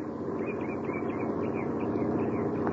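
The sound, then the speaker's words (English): In the early afternoon, a truck from a neighboring farm approaches a newly built bridge and is waved to a stop; its engine rumbles steadily, a broad droning growl that holds at about the same loudness throughout, with no one speaking. “As a truck from one of the neighboring farms approaches, he holds his ancient rifle at his side and waves the truck to a stop.”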